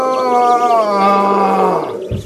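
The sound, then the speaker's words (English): A single loud, drawn-out roar of an angry lion that has fallen into a deep pit dug by a hunter, sustained for about two seconds, its pitch sagging downward before it breaks off abruptly. “"How was I supposed to know?" he roared angrily.”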